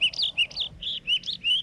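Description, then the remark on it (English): An olive warbler sings in a forest: a quick series of clear, high whistled notes repeated in a steady rhythm, distinct against a quiet background. “Olive warbler.”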